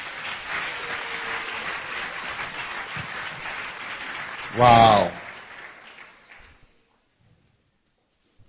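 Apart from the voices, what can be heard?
audience clapping hands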